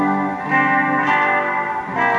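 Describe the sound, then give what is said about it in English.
Guitar chords played through the hall mode of a reverb pedal, drenched in lush hall reverb, each strum blooming into a long, shimmering wash that blurs into the next, at a steady moderate loudness with no voices. “But I actually like the hall better. The hall reverb is where it's at.”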